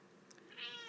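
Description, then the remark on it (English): A cat sitting on an ottoman, in a home near the Oakland–Berkeley line, gives a short, high-pitched meow near the end, preceded by a couple of faint chirpy squeaks. It's soft, with no one talking. “Kitty's on the ottoman, baby's on my lap.”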